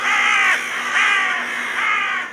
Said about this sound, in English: A raven croaks knowingly out of view.